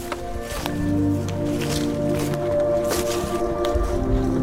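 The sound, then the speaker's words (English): Steady outdoor ambience with calm, gently moving water, a low continuous hum underneath and occasional soft splashes or rustles of leaves, even in loudness throughout. “When you're in a place like this, you notice the rustling of the leaves, you notice the calmness of the water or the birds cry.”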